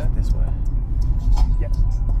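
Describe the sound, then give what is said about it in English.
A steady, dense low rumble of road and engine noise fills the inside of a car driving around with no traffic, with faint, indistinct voices murmuring now and then above the drone. “We're just driving around right now.”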